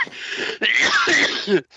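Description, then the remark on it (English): Two harsh, raspy coughing bursts in quick succession, loud, the second longer and ending in a wheezy catch of breath. No one speaks. “Don't make me laugh, Bronchi. You know, it makes me cough.”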